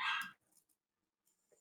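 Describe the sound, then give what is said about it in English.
A single sharp dog bark rings out at the start, followed by near silence with faint rustling and a soft thump at the end. “And the dog's barking in the background.”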